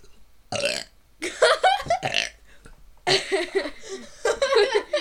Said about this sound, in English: How do you guys like the end of our burps? I can actually burp at will.